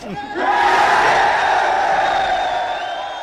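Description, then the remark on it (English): In a film scene, a large gang crowd erupts into loud, sustained cheering and shouting after its leader lays out a plan to keep a truce and take over the city one borough at a time. Voices blend into a roaring wall of whoops and battle cries that holds steady for a few seconds before easing slightly. “So he laid out the plan, and everyone's cheering.”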